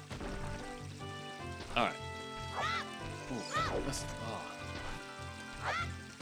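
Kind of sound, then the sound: bird, chicken clucking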